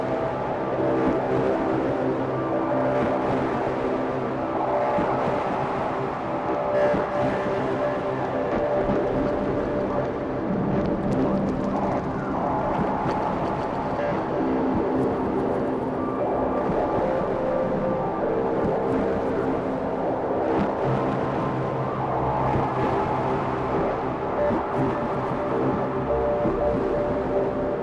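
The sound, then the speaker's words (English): Four modular synth filters (Wasp, Angle Grinder, SVF and Ericasense DIY Multimode VCF), all in bandpass mode and modulated by diode chaos, produce a dense, steady droning tone whose resonant harmonic bands shift and wobble throughout, loud and continuous with no voices. “They are all in bandpass mode. Let's get some modulation going with some diode chaos.”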